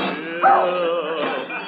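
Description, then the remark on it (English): A dog whimpers and whines continuously, broken by a couple of sharper yelping barks, with a muffled, narrow, old-recording sound and no talking. “Of all the clumsy, fumble-footed hounds.”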